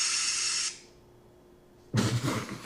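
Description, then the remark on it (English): A spray can hisses in a steady, bright burst for under a second, then goes quiet before a louder, rougher rush of noise starts and continues to the end. No one speaks. “They got that spray.”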